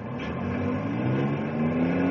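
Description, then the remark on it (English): A loaded logging truck's engine roars steadily, its pitch climbing gradually as it pulls away under power, carrying a first load of logs to market at the mill. No voices are heard. “there goes your first load of logs to market.”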